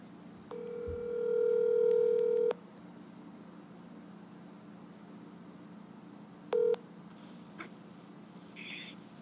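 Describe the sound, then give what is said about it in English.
An outgoing call's ringback tone: one steady electronic ring lasting about two seconds, a long pause, then a second ring that cuts off almost immediately, over a low line hum. “I'm going to call up Chris's girlfriend now, and we will hear some more of this story.”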